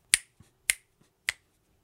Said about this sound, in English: Little finger snapping there.